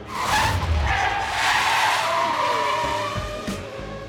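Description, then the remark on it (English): A race car's tires screech in a long, loud skid that wavers in pitch, with engine noise roaring underneath as Schumacher's car speeds off from a pit stop at the 2000 Spanish Grand Prix, running over a mechanic still working on it. No one speaks. “But he didn't realize Nigel was still working on his car, so he ran him over as he sped off.”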